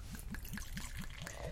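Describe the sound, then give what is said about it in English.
Dark beer glugs steadily from a freshly opened bottle into a glass, a rhythmic gurgle of about seven quick pulses over a continuous liquid rush, with no talking. “And the pour?”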